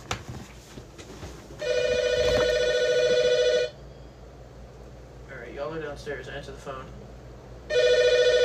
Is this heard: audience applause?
no